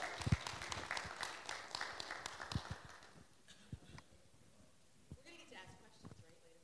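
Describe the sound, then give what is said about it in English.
A small audience claps for guests, a dense, crackling burst of hand claps for a few seconds that then thins out to scattered, sparse claps before fading. “So give them a little bit of hand clap.”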